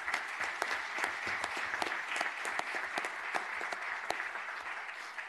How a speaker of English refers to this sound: So we want to give him a big round of applause.